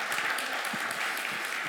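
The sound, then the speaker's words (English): An audience at New Song applauds a speaker, many hands clapping in a dense, steady patter at an even moderate loudness, with no voices rising above it. “Give him a little round of applause”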